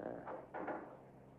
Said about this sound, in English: Just a moment. Till I close the fire door.